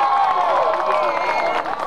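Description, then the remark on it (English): The final siren at a football grand final blares long and steady over a roaring, cheering crowd, its pitch holding mid-range and sagging slightly as it sounds throughout. “Siren sounds.”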